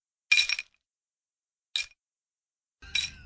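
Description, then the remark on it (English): Ice cubes clink against a drinking glass in three short, bright bursts separated by pauses, fairly clear, the last rattle trailing into a low rumble. “I don't have enough ice in this glass to really, you know, they can, are you drinking right now?”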